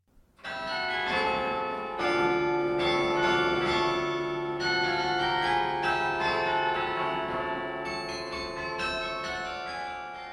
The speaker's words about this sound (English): who I met at Beaumont Tower just a few weeks ago on a Tuesday morning as he played his weekly recital on our university carillon.